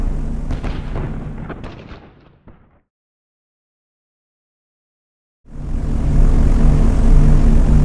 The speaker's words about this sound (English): Meanwhile, the flak still raged on, even more so now that the 530th was a slow-moving duck in a field of vengeful hunters.